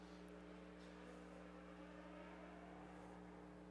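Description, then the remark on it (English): A car, like an Impala, accelerates from a standstill outside, its engine a faint, steady low hum with a whirring tone holding level for a few seconds, heard alone without any voices. “Or that person has one of the cars that does that whenever it's going from 0 to 12.”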